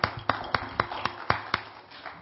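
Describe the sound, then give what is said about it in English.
A church audience claps in unison as a hand clap of praise to God: a steady, quick beat of about seven sharp, loud claps, then a softer, fading patter at the end. No one speaks. “And once again, we're going to give God a hand clap of praise as we come forth with the word of God.”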